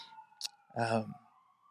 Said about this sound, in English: You know, if you've been around Gather, you are used to the sirens that take place.